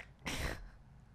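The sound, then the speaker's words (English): A single sharp cough bursts out loudly for a moment and then stops, leaving only faint background noise. “Yeah, I, like, coughed excuse on it.”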